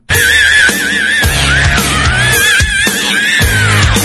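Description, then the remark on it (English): A loud, sustained high scream from the John Gibson radio show runs for about four seconds, its pitch wavering up and down, with a droning, pulsing low layer underneath and no talking. “I always wait till the scream's over.”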